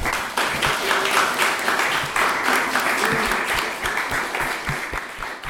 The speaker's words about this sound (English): Thank you very much to all the filmmakers for joining us today, and thank you all of you guys for coming. Round of applause.